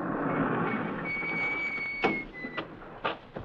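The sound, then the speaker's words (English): A small side door slides open with a long, high-pitched metallic squeal over a steady rumbling background, followed by several sharp clunks and knocks as it shifts and settles. “It's a little side door.”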